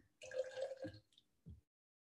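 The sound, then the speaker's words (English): Liquid is poured out briefly into a metal can for AOC's campaign, a hollow, ringing splash lasting under a second, followed by a short, soft knock; no one speaks. “It sounded like you just pissed into a can.”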